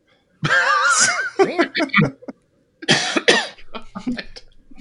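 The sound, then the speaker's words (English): A person's voice imitates cat noises while making a little paw motion with one hand: wavering, meow-like yowls with sliding pitch, delivered loudly in two bursts with a brief pause between them. “don't make cat noises, okay? Don't do that again.”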